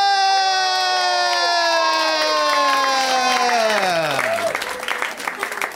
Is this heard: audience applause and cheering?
yes